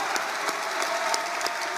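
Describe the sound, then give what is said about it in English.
A crowd applauds steadily for soldiers, sailors, airmen and veterans after a leader asks them to. A dense wash of clapping with sharp individual claps popping out now and then, loud and sustained with no voices on top. “It's nice to hear any leader ask the crowd to applaud for our soldiers, sailors, airmen, and veterans.”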